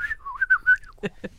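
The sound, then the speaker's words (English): A person whistles a short, wavering melody of several quick notes, fairly clear, followed by two brief breathy bursts of voice at the end. “It goes along with my talent for whistling. Oh, I can whistle.”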